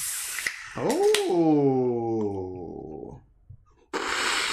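A sharp crack and hiss of a Nitro Pepsi can opening, followed by a long descending, drawn-out tone and then a steady fizzing, pouring rush as the drink is poured hard.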